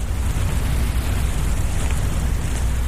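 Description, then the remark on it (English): Earthworms moving through the soil just beneath a lawn in spring, heard as a dense, steady crackle of tiny sand grains clicking together over a constant low rumble, with no talking; recorded by Dr. Bob Montgomery of Queen's University in Canada. “The worms are moving through the soil, and the little particles of sand are hitting against each other.”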